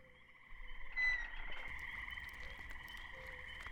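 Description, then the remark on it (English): A steady chorus of frogs croaking together, a continuous trilling drone with overlapping calls, fairly quiet and with no one talking. “I really like frogs.”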